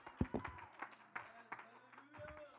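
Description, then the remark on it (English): A church audience claps their hands in praise in a loose, uneven burst of sharp slaps, mixed with crowd voices and shouts. “Oh, somebody ought to clap your hands and give the Lord some praise.”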